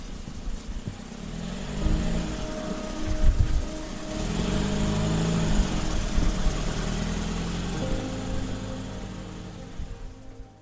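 A Land Rover's engine drones steadily as it drives, a low rumbling hum with faint tonal whine running throughout, fairly loud and unbroken, with no voices.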